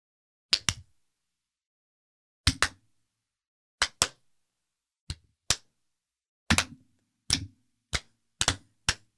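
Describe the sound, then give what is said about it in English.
Sharp hand claps passed from person to person in the improv game pass the clap, popping out in quick pairs and singles in an uneven rhythm with short pauses between, growing denser toward the end; no one speaks. “That's the lovable improv game, everybody, called pass the clap.”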